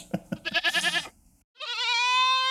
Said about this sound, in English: No, okay, yes, it is a literal goat.